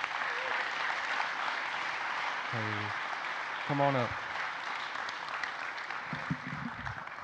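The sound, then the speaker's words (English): A church audience applauds steadily, the clapping dense and sustained throughout, as a couple is invited up to celebrate their baptism, while a man's voice calls out briefly over it. “So if y'all would, please give them a round of applause.”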